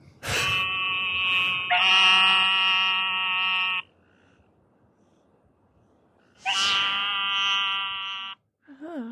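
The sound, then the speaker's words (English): An eastern narrow-mouthed toad gives two loud, nasal buzzing bleats, each lasting a few seconds, separated by a quiet pause of about three seconds. “That's an eastern narrow-mouthed toad.”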